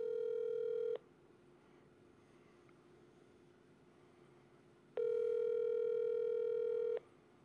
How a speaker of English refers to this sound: And it's ringing. And ringing. And ringing.